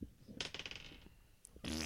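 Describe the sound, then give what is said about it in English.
Dice rolled across a hard surface to search something: a quick run of sharp, bright clicks that bounce and fade within about half a second, followed by a louder burst of rustling noise. “Anyway, if you guys are going to search something, roll some dice.”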